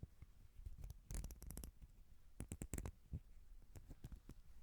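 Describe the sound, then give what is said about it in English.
Crisp metallic snips from thick professional scissors come in short clustered bursts, several quick cuts at a time with brief pauses between, fairly quiet, with no talking. “Scissors, price, thick professional scissors.”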